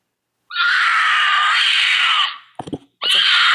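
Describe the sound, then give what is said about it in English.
A mountain lion lets out a long, shrill, wavering scream, pauses briefly with a few rough grunting clicks, then starts screaming again; loud, with no talking. “That's a mountain lion, and you could probably see the actual mountain lion in which the scream is coming from.”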